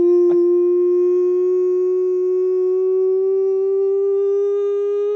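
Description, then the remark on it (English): A loud siren sound effect used as the show's 'nonsense siren': one sustained, buzzy tone that creeps slowly upward in pitch for about five seconds, opening with a brief click, with no voices. “That is the nonsense siren.”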